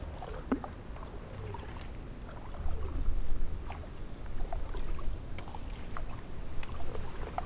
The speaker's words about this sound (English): Going behind a parked car. Oh, here's some water. Oh, there is no parked car here, so we have to walk in some of this water.